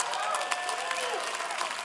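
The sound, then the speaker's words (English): A church audience applauding for themselves: dense, steady clapping that holds at an even level for the whole moment, with a few voices calling out underneath. “And that's y'all clapping for yourselves.”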